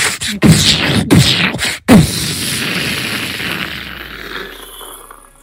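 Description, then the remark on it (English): Bomb explosions as a sound effect: three heavy blasts in quick succession, then a long rumbling roar that slowly fades. No one speaks. “No guns, no bombs, no choppers.”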